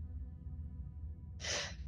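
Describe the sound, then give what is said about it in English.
A single deep breath rushes in near the end, breathy and airy, taken to steady oneself before jumping down into a hole, over a steady low rumble of background noise. No one speaks. “I'm just gonna look down and try and gather my courage. All steady right. The breathing.”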